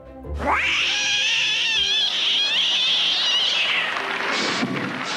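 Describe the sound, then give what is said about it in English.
Voice actor Frank Welker convincingly imitates a cat on a 1970s variety show, producing a long, wavering yowl that rises and bends for several seconds before breaking into a shorter squealing cry, loud with no talking. “Here's Frank making cat noises on a variety show in the 1970s.”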